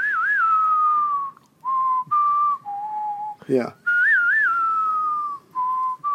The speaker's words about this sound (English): yeah, you can't do the whistle. Hold on, no. You can do the do-do-do.